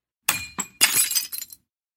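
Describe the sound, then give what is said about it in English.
A loud crash of breaking glass, with several bright shattering bursts and tinkling fragments over about a second and a half, with no one speaking. “Like last time, it was glass-like crash and what sounded like marbles going across the floor.”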